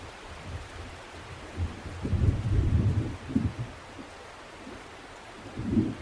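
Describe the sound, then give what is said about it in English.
Steady rain hisses across the whole clip while low, rolling thunder rumbles in, swelling strongly around the middle and again near the end. No one speaks. “Does the sound of the rain stay the same or does it change?”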